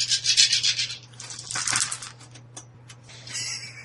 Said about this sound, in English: It'll be rated with so many d6. Yes. You'll roll that many dice, okay. Add up the total, and that tells us the effect of what you were able to do.